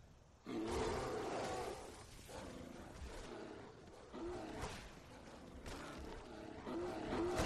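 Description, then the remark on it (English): A bear roars, a loud, rough growling that bursts in abruptly and keeps going for about seven seconds, swelling and surging several times with no one talking. “Oh, I hear a bear.”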